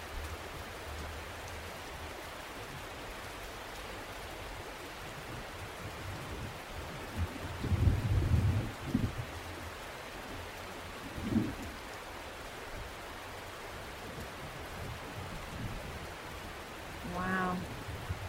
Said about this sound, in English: I notice that the rain is changing outside. My body is feeling more calm. My breath is getting a little slower. And my mind is starting to quiet. I don't know about you, but that's what happens to me when I listen to the rain in this way.